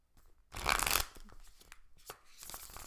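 A deck of tarot cards is shuffled: a loud, dense riffling burst lasting about half a second, followed by softer sliding and tapping of cards being gathered.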